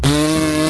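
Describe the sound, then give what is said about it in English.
A short, loud, buzzing raspberry blown with the lips imitates a fart. It's a single steady, rasping burst, under a second long, with no talking. “I think that is MWMB's very first fart joke and came out of my mouth”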